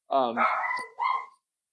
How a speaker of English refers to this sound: Oh man, that dog. Yeah, my dog is barking.